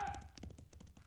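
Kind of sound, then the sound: animal, horse hooves clip-clopping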